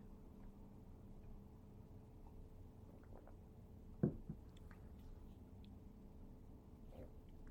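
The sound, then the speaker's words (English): A quiet sip of ESB beer with a small wet slurp and gulp about midway, set against a low background hiss; no one speaks. “Take another sip of this ES. Delicious B.”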